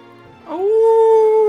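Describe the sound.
A person imitates a wolf howl as a Halloween buzzer noise in a film quiz, a single sustained note that swoops up and then holds steady, loud, after a brief quiet start.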